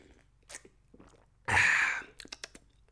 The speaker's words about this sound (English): Quick sip of coffee. Coffee break.